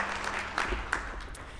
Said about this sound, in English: Let's give Tyler a round of applause as he shows how to juggle.